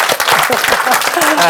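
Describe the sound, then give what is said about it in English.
An audience breaks into a sustained round of applause for two guests after an interview, many hands clapping in a dense, steady patter, with voices faintly audible underneath. “A round of applause from everyone, please.”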